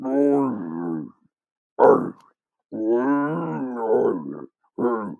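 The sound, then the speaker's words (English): A man's voice imitates a growling, roaring creature, the film character Madman Marz, in several guttural bursts with short pauses between them, fairly loud, with no other sounds behind it. “So that's the voice I'm doing.”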